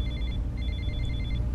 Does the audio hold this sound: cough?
no